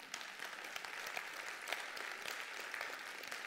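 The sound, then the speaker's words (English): A crowd applauds steadily, a dense crackle of many hands clapping at once, fairly loud and continuous with no voices over it. “You can clap for that.”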